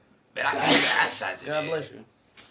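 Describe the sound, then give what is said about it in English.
A single loud sneeze bursts out with a harsh, breathy blast, then trails off into a voiced, drawn-out tail before falling quiet. “God bless you.”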